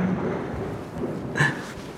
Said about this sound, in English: Did you hear that thunder?